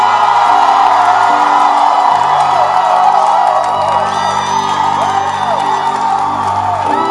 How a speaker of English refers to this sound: Is this how you clap for your pastor in this church? Let the shout be louder.